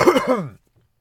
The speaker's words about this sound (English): Woo! It's a big old weed cough.